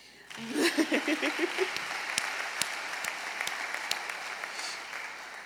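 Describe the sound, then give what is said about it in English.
An audience at a worship service breaks into steady applause after a Bible reading, dense clapping with a few louder individual claps standing out, and some brief voices and chuckles near the start. “And yes, that's a great place to clap.”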